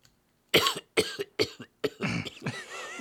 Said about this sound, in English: I got a cough.